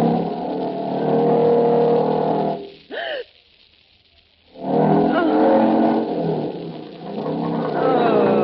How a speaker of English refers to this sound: Look at him. Watch him ride that motorcycle on nothing but a wire. There he goes.